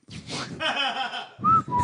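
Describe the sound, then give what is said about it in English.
Two short, shrill finger whistles, made with fingers put in the mouth, ring out near the end, a high steady tone then a slightly lower one, following a brief stretch of breathy, voiced sound. “Yeah, you put them in your mouth and you whistle.”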